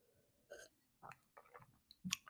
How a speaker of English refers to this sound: I'm getting a sip of my iced coffee.